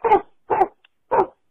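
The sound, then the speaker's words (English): A person's voice imitates a dog barking, three short, loud woof-like bursts spaced about half a second apart, with no other sounds. “I can sometimes roughly impersonate a dog.”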